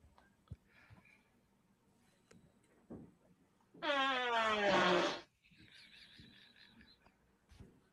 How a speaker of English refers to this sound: Was that the mom farting the whole time?